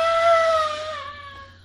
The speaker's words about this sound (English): But a woman, yeah. Listen to the mic. A woman's shrill scream.